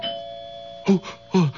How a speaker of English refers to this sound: Who's that? Doorbell.